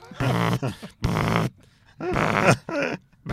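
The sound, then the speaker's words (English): A voice imitating a car's proximity sensor, set to buzz instead of beeps, going off as each person walks too close past the car at traffic lights: a series of loud, rough, low-pitched vocal buzzes in uneven bursts, some long and some short, separated by brief pauses. “And when people walk too close to the car, each person that walks past, it goes...”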